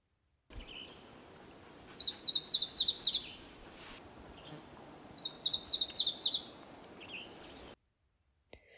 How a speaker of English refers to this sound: One more time, various songs of the McGilvery's warbler.